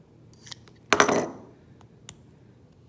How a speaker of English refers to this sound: So you literally just wanna, you know, make a cut in the wrap and tear it off. All right, so here's the old wrap.